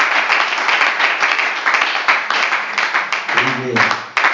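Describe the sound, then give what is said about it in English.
Sustained applause from a church audience at Abundant Life Center, clapping for what God has done: a dense wash of many hands clapping at steady loudness throughout, with a voice briefly rising over it near the end. “Let's clap our hands and work for what God has done.”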